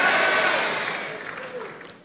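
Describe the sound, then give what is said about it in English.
An audience claps together in a dense, steady burst of applause that gradually fades over about two seconds, with a faint murmur of voices underneath. “You see, those who don't believe are not clapping.”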